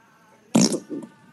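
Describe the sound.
A person imitates a fart with their mouth: one loud, short, buzzy raspberry burst, then a softer, briefer sputter right after, with no talking.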